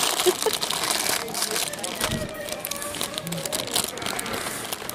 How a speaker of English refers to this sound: Perfect audio, rustling. No, it's good. It's good Foley work. It shows, shows where we are.